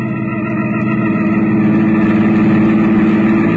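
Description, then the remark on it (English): A car engine runs with a steady rumble that builds slightly in strength as the car is driven out of a garage. No voices, just the continuous mechanical drone throughout. “before Catherine and the servant spotted me, I had my car out of the garage”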